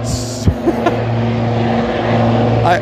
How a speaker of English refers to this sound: it's another helicopter.